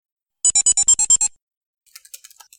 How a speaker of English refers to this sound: Are you typing? Or is that a cat? Sorry. No, that's me. I got an email from a student, sorry.